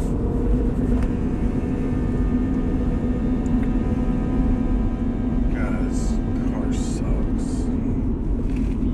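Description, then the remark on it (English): A steady, loud low drone of a truck engine and road rumble from inside the cab, continuous throughout, with faint voices briefly audible beneath it. “This is my truck.”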